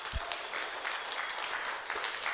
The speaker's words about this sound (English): Let's give him a round of applause here.